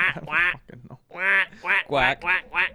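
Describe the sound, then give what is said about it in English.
A person imitates a duck, letting out a rapid series of nasal, buzzy quacks, a couple, a brief pause, then several more in quick succession, fairly loud. “Well, can you sound like a duck?”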